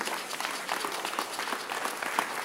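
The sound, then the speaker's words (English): An audience claps steadily for a couple of seconds, a dense patter of many hands with brighter individual claps popping out of the wash, no voices over it. “The way you are clapping, God show that you need prayer.”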